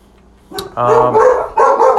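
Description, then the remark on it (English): Two mutts, a Basset Hound and a Min Pin mix, bark in two loud bursts, the first starting with a sharp yip and the second following right after, with a tonal, slightly howling quality. “Those were our dogs.”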